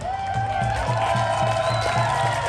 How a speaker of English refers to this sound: Thank you, guys. Rise up and keep cheering and keep holding your ground, you guys.